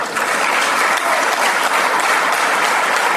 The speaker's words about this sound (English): By the way, in case you went to CPS school and can't figure it out, them clapping about de-dollarization, that's not good.